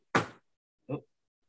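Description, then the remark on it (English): A chair gives a sharp pop, followed a moment later by a second, lighter creaking knock as it settles. Both sounds are brief and clear, with silence around them. “My chair just popped. Broken chair alert.”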